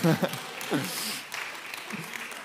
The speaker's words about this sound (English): I deserve a round of applause for that. Come on.